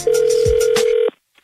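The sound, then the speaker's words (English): A single steady telephone ring tone for a prank phone call holds for about a second, mid-pitched and loud, with scattered bursts of other sound around it, then cuts to a brief silence. No one speaks. “Right now, it is time for the nephew in today's prank phone call.”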